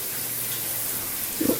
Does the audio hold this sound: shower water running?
yes